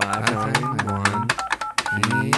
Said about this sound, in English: Great. I'm dialing right now.